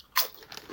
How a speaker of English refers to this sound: Crunch.